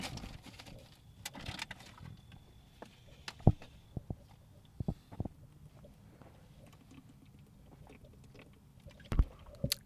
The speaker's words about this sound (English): Gotta drink some water. My mouth dry as shit.